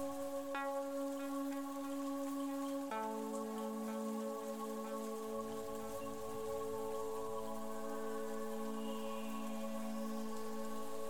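rain falling

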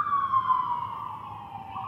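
emergency vehicle siren passing

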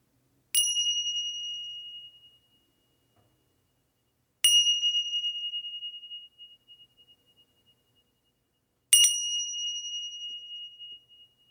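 three meditation bells ringing

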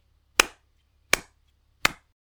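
rhythmic hand clapping

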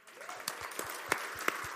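audience applause

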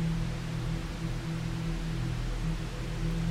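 static noise

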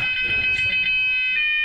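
fire alarm going off

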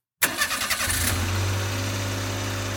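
car engine starting

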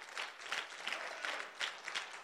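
audience applauding

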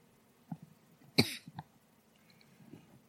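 cough

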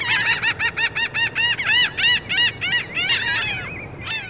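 laughing gull calls

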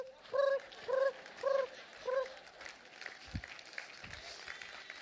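audience clapping

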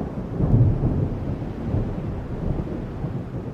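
rolling thunder with rain

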